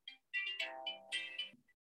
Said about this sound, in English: Oh, hang on. My son's ringing me.